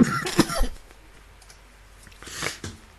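A person coughs in a short fit from smoke: a cluster of harsh coughs, a brief pause, then another rough burst. No talking.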